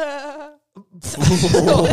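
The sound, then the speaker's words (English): A voice makes one short, quavering bleat like a sad sheep, wobbling as it fades, then a brief pause gives way to a loud, noisy burst of sound. “That's sounds like a sheep, like sad sheep.”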